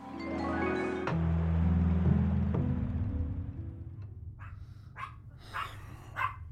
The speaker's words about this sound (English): Oh, what the hell is it? Oh, goddamn dog. Come on, let's do this. Hey, come on, quiet. Quiet, stop barking.